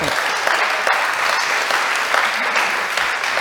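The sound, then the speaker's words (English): A crowd at a coffee talk event in San Francisco claps for the speaker Kent in a sustained round of applause. It is a dense, even wash of many hands with no voices standing out, holding at a fairly loud level throughout. “One more big round of applause for Kent.”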